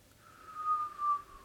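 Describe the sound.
A person whistles an imitation of a steam train whistle: one sustained mid-high tone that drifts slightly downward, swelling twice in loudness over about a second and a half, with no talking.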